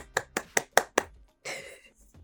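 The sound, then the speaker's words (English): Five crisp hand claps in a quick, even rhythm, each a sharp, loud slap, followed by a short burst of airy, hissing noise. “So this win deserves a hand clap.”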